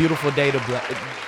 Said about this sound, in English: So, matter of fact, yeah, while she getting that mic right, y'all got one of them? Nah, we got a round of applause.